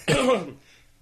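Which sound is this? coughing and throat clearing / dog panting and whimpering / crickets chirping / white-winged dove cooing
coughing and throat clearing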